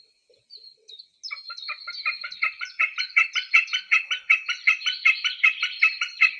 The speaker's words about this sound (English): And we also have the pleasure of having the common snipe sound, the singing male, in studio as well. So listen up. What a gorgeous bird.